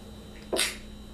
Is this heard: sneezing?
yes